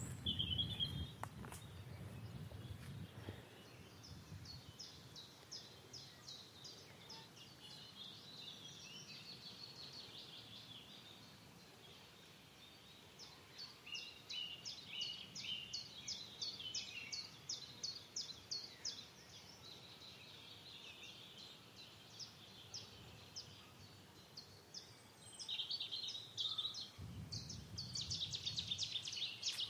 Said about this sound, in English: Now I'm going to see, before I go, if I can get Seti's warbler. It's in a hedgerow, which is odd. It's normally in reed beds, but there's one.